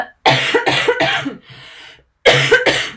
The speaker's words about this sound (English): And I feel like I need to cough now again. So I'm just going to cover the microphone.